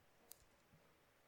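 A single crisp keystroke clicks sharply on a computer keyboard as a web address is typed, followed by a faint soft tap, against a quiet background with no talking.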